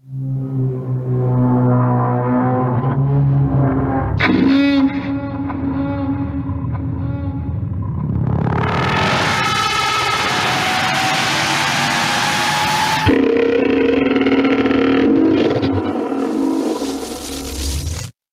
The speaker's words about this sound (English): I love how loud I made that last roar. Very spooky. It's an angry whale sound from Star Trek 3.